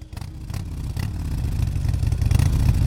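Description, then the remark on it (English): A Harley-Davidson motorcycle engine rumbles with a deep, throaty idle that swells steadily louder as it revs over a few seconds, with no voices. “we turned our attention to Harley Davidson, the great maker of motorbikes. But as our Money Talks podcast found, their engines are stalling”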